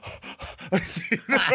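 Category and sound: vocal imitation, imitated heavy panting breaths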